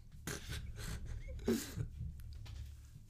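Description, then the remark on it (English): A dog named Lucky barks a few times in short, sharp bursts, fairly faint, over a low steady background rumble. “I'm going to put your fucking dog down if this doesn't stop right now.”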